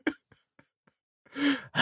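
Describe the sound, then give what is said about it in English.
A voice imitates heavy breathing: a short puff, a few faint clicks, then two loud, drawn-out breathy exhales. “Also, the problem is essentially it's just like someone with quite bad breath just breathing on you.”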